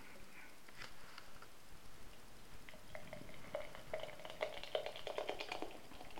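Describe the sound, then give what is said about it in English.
Beer pours steadily into a glass, with a continuous fizzy crackle of foam and gurgling that grows livelier toward the end, leaving a very hazy golden beer with an extremely foamy white four-finger head; no voices. “That's poured a very hazy golden colour with a four finger. Extremely foamy white head.”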